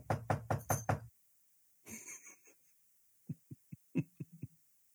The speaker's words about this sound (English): So, I knock on the door.